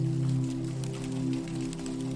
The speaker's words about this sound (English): tin roof forms a slope over the windows and walls of the hut, and the rain cascades over the aluminum edge like a waterfall. Inside, you remain safe and dry, comforted by the continuous music of falling rain.